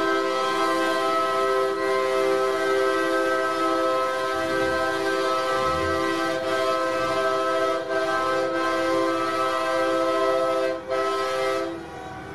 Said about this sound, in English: Okay, this is drone footage. I'm playing this from a YouTube clip, but it's drone footage flying over downtown Ottawa. Thousands of vehicles, horns honking all over the place. This is from February 1st. This was part of the Freedom Convoy.